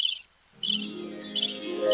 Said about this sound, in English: You hear birds chirping? No, it was part of the show, sir. You hear birds chirping.